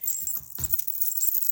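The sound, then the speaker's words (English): A metal bracelet is taken off and jangles right next to the microphone, giving bright, shimmering clinks with a sharper rattling burst partway through. No one speaks. “Oh, here, I'll take off your bracelet real quick.”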